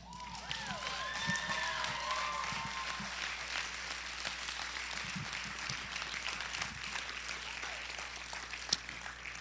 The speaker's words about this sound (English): Well, Life Church, why don't we give them one more round of applause? Everybody who participated in our celebration service.